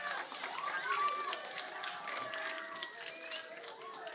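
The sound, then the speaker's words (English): A crowd claps and cheers steadily, with whoops and shouting voices rising over a dense wash of applause that holds at a fairly even level throughout. “All right, y'all can clap for it.”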